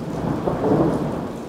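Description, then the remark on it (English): A thunderstorm with a low, continuous rumble of thunder over steady rain, broad and enveloping, with no voices. “I love thunderstorms. The sounds, the flashes of light, the ground rumbling.”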